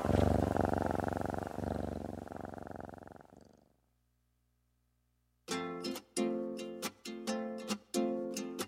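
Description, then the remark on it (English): A cat, Mittens the Cat from Wellington, purrs loudly in a steady, rumbling rhythm for a few seconds, then fades out; after a brief silence, bright music with punchy notes begins. “Please welcome His Royal Floofiness, Mittens the Cat.”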